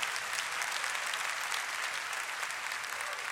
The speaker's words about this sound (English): Come on, clap your hands and thank God.